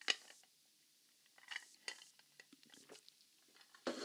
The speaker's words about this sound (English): Give me a second. I'm sipping a little whiskey right now, so need to.